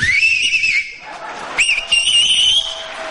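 A person whistles through the lips without fingers in a warbling, nightingale-like style: two loud bursts of shrill, wavering tone with a brief pause between them and no talking.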